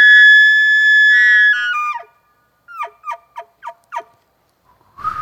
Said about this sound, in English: That sounds like a special elk.